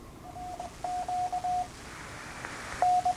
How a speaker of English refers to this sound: You know these ionic air cleaners? Oh, yeah. Little ozone machines. This is the ionic breeze air cleaner. This is what they sound like.